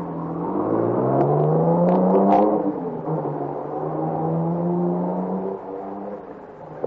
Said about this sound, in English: They run inside and come out again with 2 other guys. They all pile into the car and take off through the village, supposedly after me.